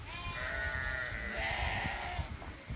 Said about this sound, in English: In which apparently there were sheep? In fact, there were sheep.